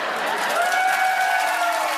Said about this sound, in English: Now, looks like that made you clap and clap. Clap and clap.